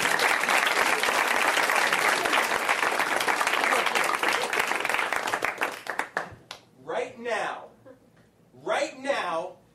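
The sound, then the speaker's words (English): Dense, steady audience applause, asked for to open a mock TED Talk, fills the first six seconds, many hands clapping at once, then tapers off as a single voice begins talking over the last few seconds. “Can you start with an applause? Because that's how they all start.”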